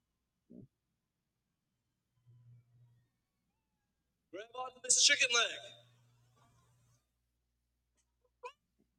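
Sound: cat meowing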